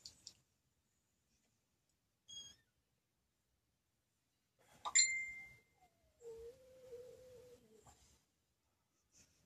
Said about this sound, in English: Was that your tummy? No, that's my phone.